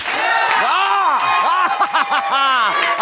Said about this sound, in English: If you could take that round of applause you just gave me and do it again to a factor of 10, not for me, but for the fact that recently I quit my job.